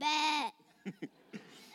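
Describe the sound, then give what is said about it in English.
A person imitates a sheep with one loud, wavering bleat, followed by a few short, soft vocal sounds. “Then he heard it. A bleating sound.”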